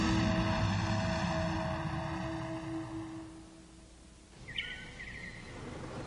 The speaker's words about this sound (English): The spaceship and its superhuman cargo knifed down through the clouds toward a field outside a town called Smallville in the United States of America.